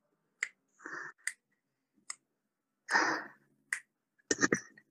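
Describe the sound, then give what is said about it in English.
Crisp finger snaps, snapping along to a beat, ring out one at a time at loose, spaced intervals, with a couple of longer breathy vocal bursts between them and no talking. “I just had to snap along to the beat.”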